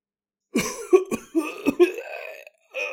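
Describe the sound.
A voice imitates a man's fit of coughing into a little spit tray, several harsh, wet hacks in quick succession with raspy breathy tails, fairly loud, ending with a short throaty rasp after a brief pause.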